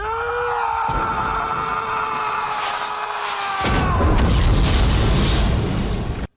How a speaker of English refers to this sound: That was the end of that wonderfully acted scene on the Solomon Islands where he has a grenade blow up right next to him, and all he gets is a little inner ear damage.